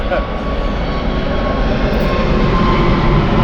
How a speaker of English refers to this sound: Hang on, we'll just wait for this plane.